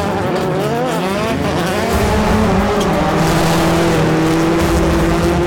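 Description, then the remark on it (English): Several Subaru rallycross race cars roar loudly while racing, engines revving and shifting in overlapping rising tones, with tires briefly squealing amid the continuous racing din. “Subaru's rallycross cars will finally go door-to-door against their peers.”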